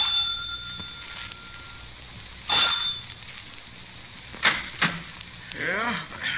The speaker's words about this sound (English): I rang the front doorbell.